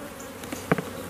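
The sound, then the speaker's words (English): A steady, low drone of honeybees buzzing around an open hive, a swarm-like hum that holds throughout, broken near the end by a couple of brief, sharp taps. No one speaks. “So there's a special bee pen you buy to paint the queen?”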